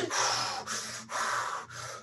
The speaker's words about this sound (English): Do we do deep breathing when we're injured? Right? Yeah. Anytime you're injured, it's a, children do it. It's a natural thing. It's an unconscious natural thing.